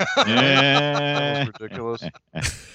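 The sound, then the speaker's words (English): A voice doing a squawky, nasal Donald Duck impression, a buzzy garbled babble lasting over a second, followed by a few shorter quacking bursts and a breathy sound at the end. “Conjuring his best Donald Duck impression.”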